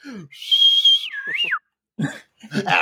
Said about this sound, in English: Just wolf whistles. I wish I could do those, but give me some time.